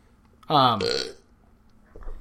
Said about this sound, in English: Burp.